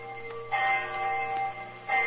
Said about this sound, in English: Our rendezvous took place right on the dot. I remember the hour was striking.